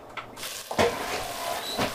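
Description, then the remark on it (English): A heavy oven door swings open with a solid clunk, followed by a fainter knock a second later against a quiet hum. The door is left open to help lower the oven temperature. “And leaving the oven door open for a little bit extra is good.”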